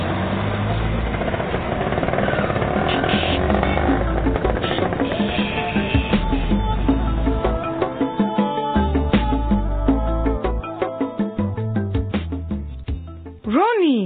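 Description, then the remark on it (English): A bus pulls up with a steady, heavy engine rumble that fills the first half, then turns into a string of clunks and mechanical knocks, ending in a short rising whoosh. “Here comes our bus.”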